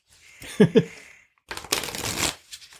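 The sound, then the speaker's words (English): A deck of tarot cards being shuffled: a couple of quick riffling flicks, a brief pause, then a longer dense, papery riffle and a few softer flutters at the end. “How do those shuffle? Amazing. Amazing. They shuffle brilliantly.”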